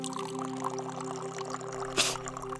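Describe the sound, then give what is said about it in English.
A thin stream of antiseptic solution pours steadily onto a wound to clean it, with a brief louder splash near the end, over a faint low hum and no voices. “Why does that water smell so strong? It's not water. It's for keeping the wound sterile.”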